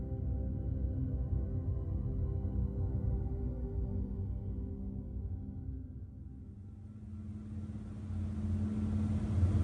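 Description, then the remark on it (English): A heavy, steady ferry engine rumble on a ferry to Iriyamote, Okinawa, drones low and continuous, with a throbbing harmonic hum, easing slightly midway before a broader wash of hiss and noise builds toward the end. “About halfway to Iriyamote, the heat and fumes of the ferry engine became too much.”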